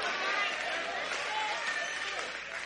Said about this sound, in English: I got about 80 claps. I'll take them.